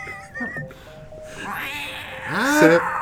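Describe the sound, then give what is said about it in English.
A cat meows a few times in quick succession, drawn-out and wavering, the final meow the loudest, rising then falling in pitch over a faint background hiss. “Where's that cat of mine?”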